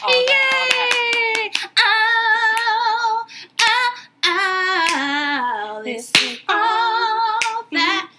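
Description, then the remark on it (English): Several quick, sharp hand claps ring out in the opening seconds, with one more later, all set against a loud, sustained melodic voice that wavers in pitch throughout. “Clap it up.”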